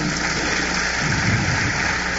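crowd, audience clapping hands

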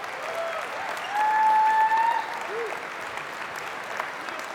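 crowd, audience hand clapping

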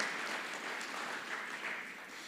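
crowd, church audience applause

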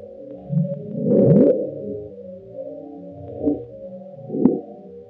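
nature, the Bloop

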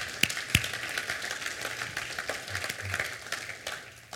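crowd, audience applauding

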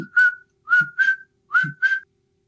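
sound effect, cricket chirping sound effect

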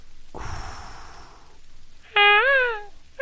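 bird, seagulls calling

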